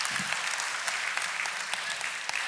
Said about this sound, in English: It's a small clap, golf clap. It's fine.